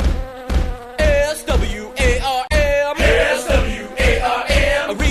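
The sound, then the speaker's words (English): Loud buzzing of bees, a dense droning hum that wavers in pitch and swells in steady pulses, with no voices present. “Speaking of friends, I think someone's about to buzz on in.”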